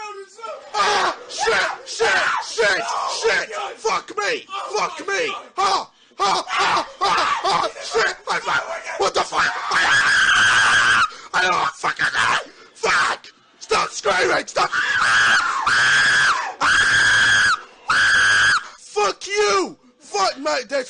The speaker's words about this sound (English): Of course, the classic horror game clip with him and Deji were just fucking screaming into the microphone.